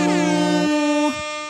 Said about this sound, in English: Another year, another May the 4th air horn moment. We're back. I feel like the air horn's really got to go hard for May the 4th.